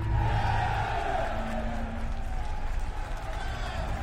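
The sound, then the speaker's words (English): A crowd of boys cheering and shouting together as they jump to their feet, a loud, steady roar of many overlapping voices that holds for about four seconds without letting up. “A huge cheer went up and all the boys jumped to their feet.”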